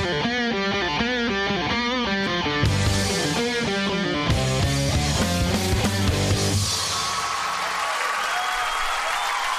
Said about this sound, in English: Please clap.